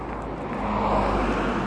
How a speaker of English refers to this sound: I'm going to wait for the car because I can't hear